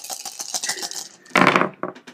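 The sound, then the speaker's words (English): Dice rattle and tumble across a hard surface during a tight game, a quick burst of clicking, clattering hits, ending with a loud cluster of impacts and a few final light taps as they settle. “So, let's see what the dice have to say.”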